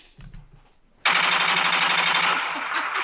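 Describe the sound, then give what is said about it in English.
A machine gun fire sound effect erupts suddenly after a faint murmur, a loud sustained rattle of rapid shots that continues without pause to the end. “Every time Bud Light's mentioned, it reminds me of the machine gun.”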